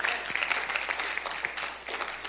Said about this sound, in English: Come on. Give the Lord a clap offering tonight. Amen.